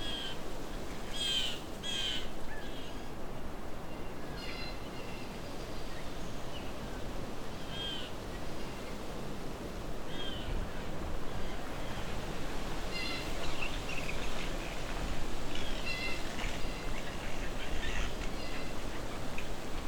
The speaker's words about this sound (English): So I'm at Alvar Bay, but the entrance is full of blue jays making lots of interesting sounds.